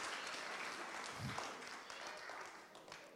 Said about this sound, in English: Now, yeah, give him another round of applause. Yes.